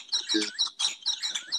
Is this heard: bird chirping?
yes